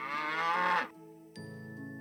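A cow gives one loud, drawn-out moo lasting nearly a second, followed by a quieter steady, droning tone. No one speaks.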